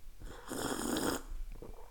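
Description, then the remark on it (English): A single airy slurp of coffee being sipped, a breathy rasp lasting under a second, followed by quiet rustles and a small sharp click as the cup is set down. “I've just got a cup of coffee and... I'm going to have a sip.”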